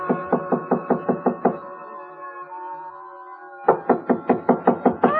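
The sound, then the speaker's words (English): Firm, rapid knocking on the wooden door of a 9th-floor hotel suite, a run of about eight raps, a pause filled with a faint sustained tone, then another quick burst of loud knocks. “So I tried knocking.”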